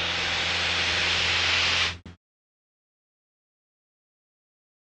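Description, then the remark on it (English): A Cessna light aircraft's propeller engine roars steadily at full power during a climb, a loud, dense drone with a low throbbing hum underneath, lasting about two seconds before cutting off abruptly into silence. “Got a full power climb, fuel pump is off, that's good.”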